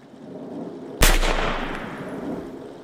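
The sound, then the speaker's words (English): A single sharp gunshot cracks out after a moment of low ambient rumble: a gun fired inside a car on a dark housing estate, a man shooting himself in the head. Its loud bang is followed by a long reverberant echo that slowly fades into the background. “A large bang echoed around the dark housing estate.”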